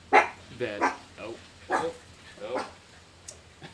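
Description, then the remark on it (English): Dogs bark four or five times in an irregular series, the sharp yaps spaced out over a few seconds, moderately loud, as someone arrives home. “My wife is home, and the dogs know it. Now they're distracted, so.”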